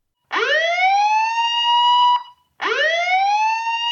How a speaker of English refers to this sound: Before she has to come up with an answer, though, an alarm sounds in the warehouse.